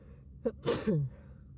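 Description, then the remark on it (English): A single sneeze: a quick sharp intake of breath followed by a loud, explosive burst with a voiced tail. “Bless you.”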